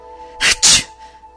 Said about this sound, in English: These spores in the air are making me sneeze.